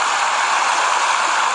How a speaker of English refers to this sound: This is stream water flowing. That's not bad.